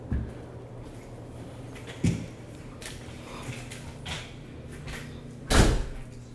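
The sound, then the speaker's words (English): A door is opened and then shut, with a soft thump near two seconds and a louder, fuller bang around five and a half seconds, over a steady low hum and faint background rustle. “And come on, y'all, get in this door.”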